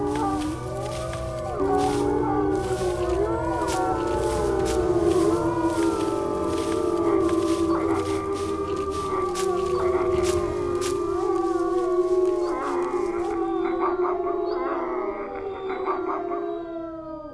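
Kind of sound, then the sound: animal, wolves howling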